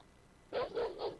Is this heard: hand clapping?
no